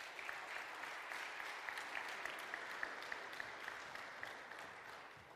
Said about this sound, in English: round of applause.